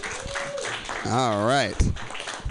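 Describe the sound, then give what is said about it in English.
An audience claps in a steady crowd wash, and partway through a loud wavering whoop or cheer rises above the applause before fading back into it. “Clap for them.”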